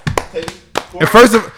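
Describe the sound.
A few sharp, scattered hand claps ring out close by, followed by voices cheering and talking loudly over them in a brief, lively burst.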